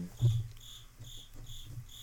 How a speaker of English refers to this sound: Yeah, you can. Yeah, it's pretty maddening, actually. You stupid dude. Cricket.